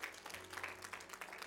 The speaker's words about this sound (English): Come on, y'all, give the Lord another hand clap of praise this morning.